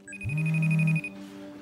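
A single electronic phone ring from a client calling at 2 a.m., a steady buzzing tone with a high chime layered over it, lasting under a second before cutting off into a quiet background hum.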